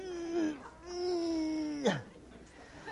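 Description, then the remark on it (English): A person's voice imitates a fussing newborn baby sitting in its high chair at dinner, with two drawn-out, whiny wails, the second ending in a sharp upward squeal, loud with no other sounds. “Okay, how many of you have seen and been around a newborn baby as it sits in its high chair while you're eating dinner, going like this?”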